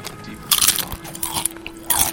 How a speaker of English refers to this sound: We might be chewing a little bit into the microphone. We apologize if that gets too annoying.